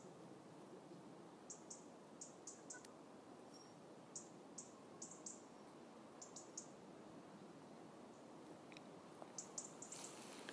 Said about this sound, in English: What I hope you can hear is the sound of two robins, or at least two, perhaps three robins, chattering to each other about 20 metres or so from each other, and I'm just standing in between the two.